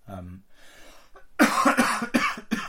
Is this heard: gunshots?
no